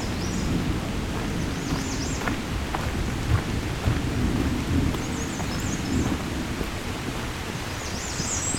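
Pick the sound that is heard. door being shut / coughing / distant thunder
distant thunder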